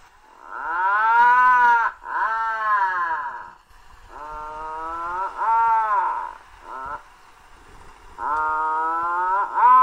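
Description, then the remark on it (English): A razorbill, a type of auk, at a cliff colony gives a series of loud, low, moaning calls, like a more revved-up puffin call or a creaky engine revving up, in several drawn-out bursts separated by short pauses, with no talking. “But anyway, their call is a more revved-up version of the puffin.”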